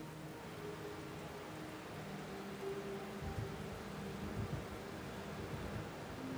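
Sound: steady rain falling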